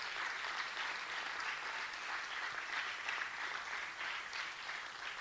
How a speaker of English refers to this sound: Let's all stand now. Let's just give them a big applause for today.